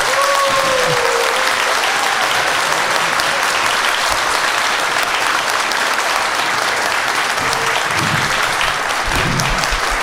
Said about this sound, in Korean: 늦게까지 이렇게 자리를 지켜주신 여러분 너무 감사하고요. 저희 홍승수 교수님께 다시 한번 큰 박수 부탁드리겠습니다.